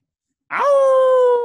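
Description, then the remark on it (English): A single loud howl begins abruptly after a short silence, swoops up in pitch, then holds a long, steady, bright wavering tone until the end. “And our we have gotten some feedback that we haven't had enough howls. So this episode, be ready to hear a lot of howls.”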